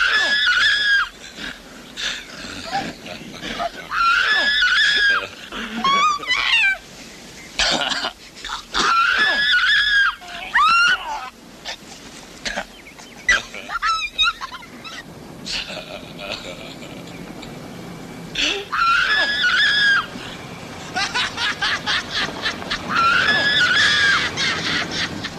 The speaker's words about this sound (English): Jennifer screams as loud as she can to draw the police. The scream they use for Jennifer here gets replayed like 7 or 8 times in the span of a minute. It's a very strange choice.